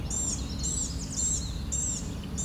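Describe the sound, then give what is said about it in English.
An American robin sings a series of short, high, warbling phrases in a steady rhythm over a low outdoor rumble with no one talking. “picked up American Robin.”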